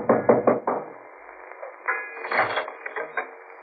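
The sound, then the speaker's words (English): A quick series of four or five firm knocks on a wooden door at Peterson's boats for hire, at a boat landing by a rough ocean, followed by a pause and some muffled shuffling and clattering sounds. “I knocked for Peterson.”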